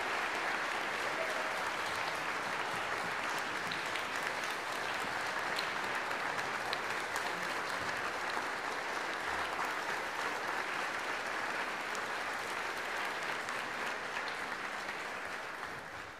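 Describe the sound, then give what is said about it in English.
A sustained round of applause for the 2022 graduating seniors, dense and steady clapping from a large crowd that holds at an even level for about sixteen seconds before starting to taper at the end. “Let's have one more round of applause for our 2022 graduating seniors.”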